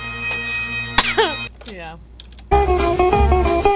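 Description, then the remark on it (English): A sharp key press on a keyboard whose keys each have four functions clicks over a steady electronic hum, followed by warbling beeps and a louder, busier stretch where indistinct voices murmur in the background. “I'm trying to figure out these keys. The truck. Each key has four functions, so you don't know.”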